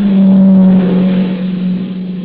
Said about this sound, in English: No, wait, here comes a car.